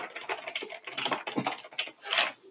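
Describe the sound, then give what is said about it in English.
Rapid, uneven clatter of keys as a man types on a computer keyboard, fairly quiet, with brief pauses between bursts and no one speaking. “He's typing it out. Can you hear it?”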